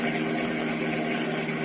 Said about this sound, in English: And as we continue now, they are speeding along a country highway in their powerful Batmobile. Listen.